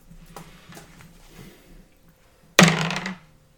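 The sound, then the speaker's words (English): A twenty-sided die is rolled on request and comes up 5: it lands with a sudden sharp clatter and rattles briefly before settling, following a few faint taps over a low background hum. No one speaks. “Roll me a d20.”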